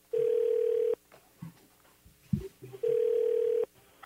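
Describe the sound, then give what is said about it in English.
Two long, steady ringback tones from an outgoing phone call to a man's wife, separated by a pause of about two seconds, with faint background rustling and a soft thump between the rings. “We're going to get the wife on the phone right now.”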